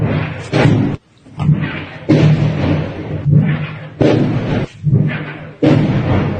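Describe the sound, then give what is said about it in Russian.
Artillery shelling in Donetsk, heard while sheltering in a basement: a rapid series of about seven loud, heavy explosions, each a deep booming blast with a rumbling tail, coming at uneven intervals with no speech between them. “Hiding in Donetsk during artillery attacks”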